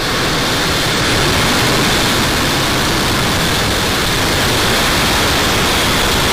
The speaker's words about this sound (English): 7, 6, 5, 4, 3, 2, 1. Engine full power. And liftoff, Falcon 9, Falcon 4 10.